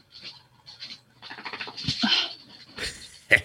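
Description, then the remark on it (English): A dog whimpers in thin, high whines broken by short bursts of panting and a sharp yip near the end, over a faint steady electronic hum. “Now the dog's making noise.”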